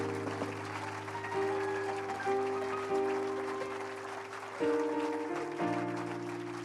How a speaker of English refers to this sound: Can you clap your hands to the Lord? And can you clap those hands a little bit louder?